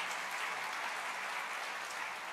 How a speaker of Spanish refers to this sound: Den un aplauso a los de la producción. ¡Wow!